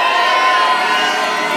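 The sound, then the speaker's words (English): A large rave crowd screams and cheers loudly and continuously during a DJ set, a dense wall of overlapping shouts and whoops filling the space with no pause. “Somebody scream.”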